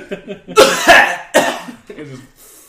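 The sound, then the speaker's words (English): A voice imitates a raspy cough of smoke for a Pokémon's Clear Smog move: two or three loud, breathy bursts, with some voiced sounds around them and a softer trailing exhale at the end. “No, it's just a cough of smoke.”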